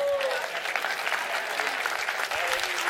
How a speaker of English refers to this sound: He said, when you are in the presence of exceeded expectations, you got to stand and you got to applaud.